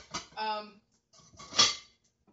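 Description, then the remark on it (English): Pans clatter and knock together in a few short bursts, one leaving a brief metallic ring, as someone rummages through a crowded kitchen cupboard looking for a particular pan while cooking. “Too many pans in my cupboard.”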